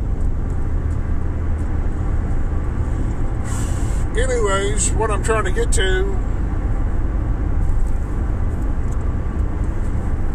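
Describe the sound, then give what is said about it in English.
Steady, loud low rumble of road bumps, outside noise and air rushing around a moving car, heard from inside the car, fills the whole recording, with a person briefly talking over it partway through. “It also eliminates sound distortion, so you may not hear as much as the bumps and outside noises and the air going around the car, the vehicle I'm in.”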